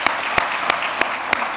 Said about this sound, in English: So let's give them all a big round of applause.